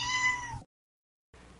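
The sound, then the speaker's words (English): A cat lets out a single clear, drawn-out meow lasting about half a second, followed by a brief silence and then a soft, low background noise. “Kitty!”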